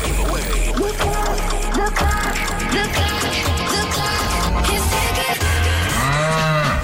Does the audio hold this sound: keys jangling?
no